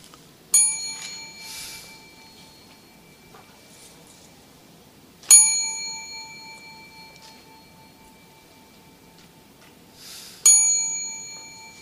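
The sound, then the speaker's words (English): A small bell is struck three times at slow, even intervals of about five seconds, rung as the signal for people to bow three times together. Each bright metallic ring lingers and fades out over quiet ambience, with no talking. “Let us bow three times together following the bell.”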